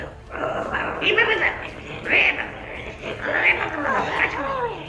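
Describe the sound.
A human voice imitates the howling, yelping cries of dog people in a few drawn-out, wavering calls with rising and falling pitch, loud, with no actual speech.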